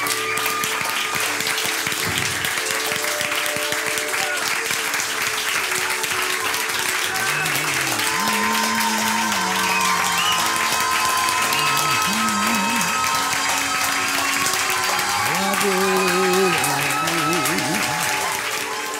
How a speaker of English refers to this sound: Can we give Jesus the best hand clap?